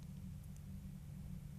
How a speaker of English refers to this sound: Now the cars parade, nose to tail down the esplanade, lap after lap.